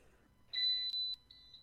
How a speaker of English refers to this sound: Microwave? Okay. Still going?